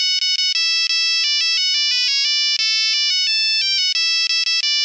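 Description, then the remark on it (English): A Nokia mobile phone from the year 2000 plays a ringtone, a bright, buzzy electronic melody of quick stepped notes, loud, running steadily for several seconds with no voices. “you have a Nokia phone from the year 2000 playing Waltzing Matilda as a ringtone”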